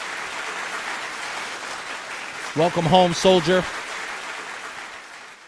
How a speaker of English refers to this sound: And again, from what I heard this morning, he got a round of applause as he left St. Francis Hospital, which we're going to do for him now.